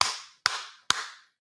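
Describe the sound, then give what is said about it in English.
Three sharp hand claps in a steady, evenly spaced rhythm, each fairly loud with a short ringing decay, and no talking over them. “You can just come in here and be like, well, he's always talking about feet and clapping.”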